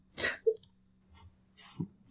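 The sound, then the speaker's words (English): A door opens with a quick latch click and a soft knock, followed a moment later by a duller thump, all fairly quiet over a low steady hum with no voices. “Yeah, that was open the door.”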